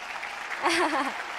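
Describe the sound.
A crowd applauds for a guest's mother and father with a steady, dense wash of clapping throughout, and a single voice rises briefly over it midway before the clapping carries on.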